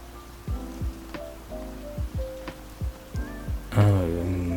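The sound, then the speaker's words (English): Steady rain hisses while heavier drops plop irregularly, with a louder splash near the end; no one speaks. “I mean, the rain's kind of nice sometimes, you know? It's really calming.”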